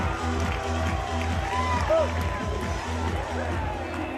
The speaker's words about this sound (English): Brock Hale, that ball was out of the stadium, over the trees. Big time swing by your senior leader on senior day. Atta baby. You can hear the crowd. And it's the first time in 2 days they've really had anything to cheer about.